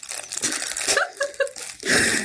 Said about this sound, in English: Sorry, I'm just using some of the toilet paper.